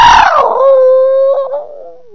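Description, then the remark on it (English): A single long, dog-like howl, loud, starting high and sliding down into a steady wavering tone before trailing off after about two seconds, with no talking. “Like a howling howl. Come on, church. You mean your dog bark?”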